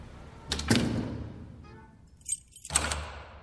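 Keys jingle and rattle as doors are locked, with two heavy clunks of the lock or door about two seconds apart and a brief bright metallic jangle between them.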